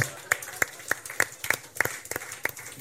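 Steady, evenly spaced hand claps for a man who changed diapers, about nine sharp slaps in under three seconds, ringing out clearly over a faint background murmur with no spoken words.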